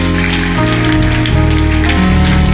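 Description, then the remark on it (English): A church audience at First Church Charlotte claps loudly in a dense, steady wash of applause, giving the Lord a hand clap of praise, with sustained low organ-like chords shifting underneath throughout. “Before you're seated, put your hands together one more time and give the Lord a hand clap of praise.”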